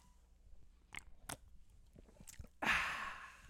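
Someone takes a sip of a drink: a few soft, wet mouth clicks and gulps, then a louder breathy exhale after swallowing. No talking.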